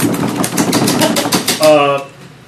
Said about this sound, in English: can we get a drum roll, please?